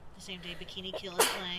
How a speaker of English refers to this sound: I didn't want any listeners thinking that … is sneezing without going bless